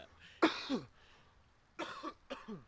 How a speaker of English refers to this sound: I'll try and cough it out.